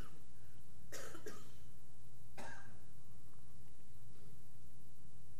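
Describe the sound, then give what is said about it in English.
Three rough coughs from a lingering cold: two in quick succession, then a single one after a short pause, followed by quiet with a faint low hum and no talking. “I've been fighting a cold for the last few weeks that I just can't seem to shake, a cough that I just can't seem to shake.”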